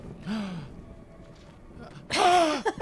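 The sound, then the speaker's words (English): A person gasps twice: a softer breathy intake first, then after a short pause a louder, sharper gasp with a voiced catch in the breath. “Gasp, realistically, you should.”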